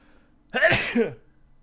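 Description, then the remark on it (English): A single loud sneeze bursts out with a sharp onset and a quick two-part release, standing alone against quiet room tone. “Oh, you can't even sneeze anymore.”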